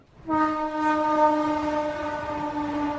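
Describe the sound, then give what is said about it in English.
A train's horn blares in one long, steady, loud blast beside the railroad tracks in Kolkata, India. It starts abruptly and holds for the rest of the moment, with faint rumbling beneath and no voices. “In the heart of Kolkata, on the edge of the railroad tracks, is a sprawling slum.”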